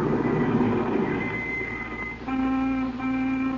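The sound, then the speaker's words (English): A car rumbles to a halt outside, its low engine noise joined by thin, steady whining tones like squealing brakes, holding at a fairly even level throughout with no voices. “And then a car pulled a stop outside, remember?”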